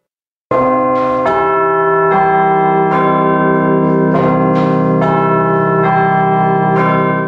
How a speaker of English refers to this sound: The apparatus is now used in bell towers everywhere and allows one person to ring the bells instead of up to eight bell ringers. Very efficient. Without the invention, many bells would have gone silent during COVID-19.